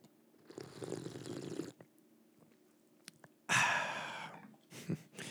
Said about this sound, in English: In your memory, well, not memory, you haven't gone anywhere, but for you, sir, here's the slurp.